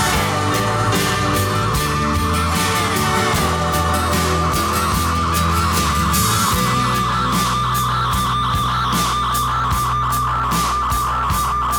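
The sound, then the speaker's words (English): A sustained musical drone holds steady beneath layered instruments and a regular pulsing beat, loud and full throughout as a song winds down, with no voices. “Do you hear that drone?”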